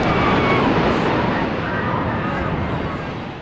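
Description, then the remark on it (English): The South Tower collapsing: a loud, dense, unbroken roar with a deep rumble beneath a hissing, crackling wash, holding steady for several seconds before easing slightly at the end. “Zerillo hardly got the words out when Gansey's attention was drawn to a roar from the South Tower above him.”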